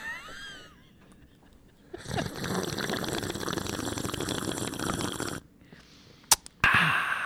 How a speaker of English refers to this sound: I'm going to slurp it loudly into this microphone. Nice.